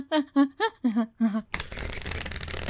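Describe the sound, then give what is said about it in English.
A brief spoken phrase, then a steady rustling riffle of a deck of oracle cards being shuffled, a dense papery flutter that continues until the end. “These shuffle real good. Every day we shuffle in.”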